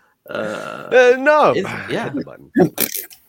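A played fart sound effect: a loud, drawn-out buzzy blast that wobbles and bends in pitch, trailing into a few short sputtering bursts near the end.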